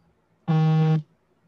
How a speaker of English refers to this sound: Is that a foghorn? Are you at sea? I can see your face, but I can't hear your voice.